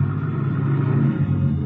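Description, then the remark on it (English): A car engine hums with a steady, low rumble as the vehicle winds down a long driveway, fairly loud, holding an even drone throughout with no voices. “Just as I get there, I hear a car winding down the long driveway, so I duck into the bushes.”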